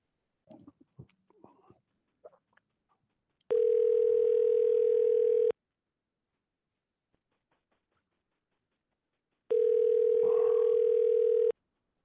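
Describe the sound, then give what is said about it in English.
A telephone line tone while a call goes through: two loud, steady buzzing tones about two seconds each, separated by a long quiet gap, after faint rustling and handling noises. “let's see if we can get him try a phone call here.”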